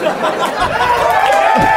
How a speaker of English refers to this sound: the crowd's going to go crazy